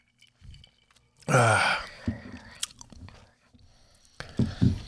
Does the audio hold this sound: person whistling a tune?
no